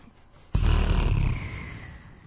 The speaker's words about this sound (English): That was a lazy fart right there.